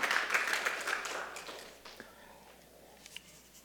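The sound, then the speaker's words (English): A church audience gives the Lord a hand clap during a sermon, a brief, dense burst of applause that thins out and fades after a couple of seconds, leaving only scattered claps and quiet room noise. “Can anybody give the Lord a hand clap for that today?”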